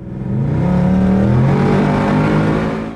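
A loud 2018–2019 Mustang GT engine revs up, its deep growl rising and holding steady with rich rumbling harmonics for a few seconds, no voices present.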